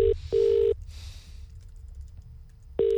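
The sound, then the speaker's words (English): Steady electronic telephone tones sound from a handset as a call is placed to Prime Minister Jacinda Ardern: a short beep, then a longer one, a pause of about two seconds, and another tone starting. Faint background hiss, no talking. “Not enough to ring the Prime Minister. With the newly appointed Prime Minister.”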